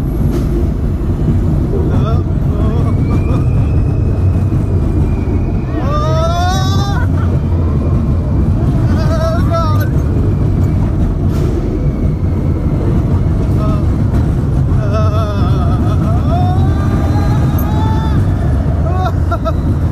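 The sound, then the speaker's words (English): A ride on Space Mountain, an indoor roller coaster thrill ride: a loud, steady rumble with wind buffeting throughout, broken every few seconds by high, wavering screams and shrieks rising and falling over the din. “What you can now hear are the sounds of the wind leaving our body on the thrill ride Space Mountain.”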